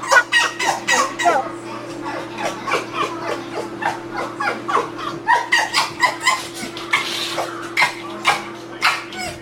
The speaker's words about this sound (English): That was a fox whining at a closed door.